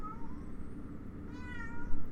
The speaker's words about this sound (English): And if you hear that, my cat is very vocal. He has a lot of opinions too.